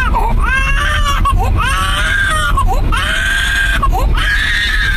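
A baby screams in a car seat in a car, loud, high-pitched wails in long sustained bursts broken by quick gasping breaths, over a steady low rumble.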